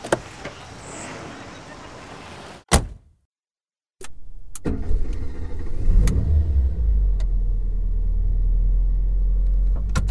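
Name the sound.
car driving along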